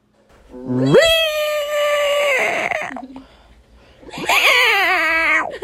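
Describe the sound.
A person imitates a cat's meow with two long, drawn-out wailing calls, the first rising then holding steady, the second following after a short pause. Loud, with no other talking.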